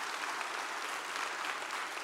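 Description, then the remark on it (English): Sustained applause from a large church audience, a steady dense wash of many hands clapping at once with no pauses, filling the whole clip at moderate volume without any voices standing out. “God, He deserves more than a golf clap.”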